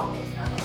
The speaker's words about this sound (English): Something fell down in the kitchen. Bart's barking.